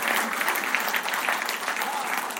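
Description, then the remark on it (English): Steady audience applause for the staff of Cotmanay School, a dense wash of many hands clapping at an even, sustained loudness for a couple of seconds with no voices standing out above it. “So we really do applaud all the staff from Cotmanay School.”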